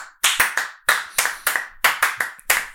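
A single person clapping hands about ten times in a loose, uneven rhythm, each clap sharp and crisp with a quick decay. No talking is heard.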